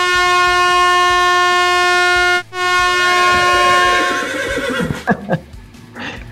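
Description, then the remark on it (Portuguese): A sustained, loud horn blast with steady harmonic tones cuts out briefly, then a horse's shrill neigh whinnies and warbles downward before fading. No one speaks. “Buzina e bronco ainda, né?”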